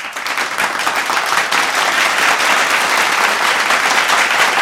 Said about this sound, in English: But yeah, guys, thank you so much for joining. Huge round of applause to all of you.